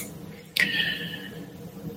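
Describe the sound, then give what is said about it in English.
A can of Athletic Brewing Company Upside Dawn Golden Ale cracks open with a sharp metallic click and a brief burst of hiss that fades over about half a second, followed by a faint low background murmur. “I'm drinking Athletic Brewing Company Upside Dawn, their Golden Ale. That's the can.”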